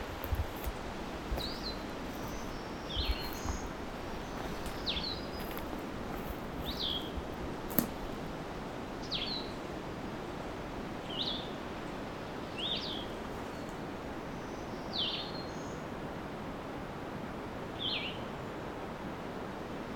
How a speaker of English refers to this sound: Blue-headed vireo.